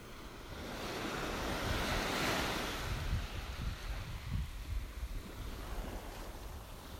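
Ocean waves break steadily on a beach, a broad rushing wash that swells to a peak and then settles into a continuous surging roar, with no voices present.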